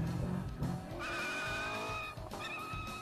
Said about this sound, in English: Sounds like you behind the wheel. Yeah, buddy. Corvette, the first thing you're struck by is how light and nimble this car is.